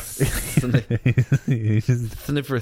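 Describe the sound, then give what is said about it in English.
A voice imitates a hissing snake with a sharp hiss lasting about half a second, followed by a run of choppy voiced syllables that sound like playful vocalizing. “You very much sounded like some kind of bucket. Snake there. I don't know what you did with your tongue.”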